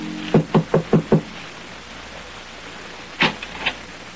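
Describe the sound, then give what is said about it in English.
Five quick, firm knocks on the wooden door of number 16, Rue de Roche in Paris, at night, in an even rhythm and clear, followed after a pause by a couple of fainter thumps and clicks like a latch or the door being handled. “makes his way through the maze of Paris traffic and knocks at the door of number 16, Rue de Roche.”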